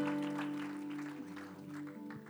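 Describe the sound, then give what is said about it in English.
An audience, taking their seats, claps together in praise of the Lord in a steady, dense burst of applause lasting a couple of seconds, with a sustained keyboard tone humming underneath. “Why don't you give the Lord one more hand clap of praise as you're seated.”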